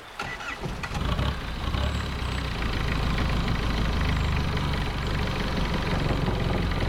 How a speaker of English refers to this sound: And as the captain goes to the little deck house, he hits a button, and we hear a strange sputtering from the back of the boat.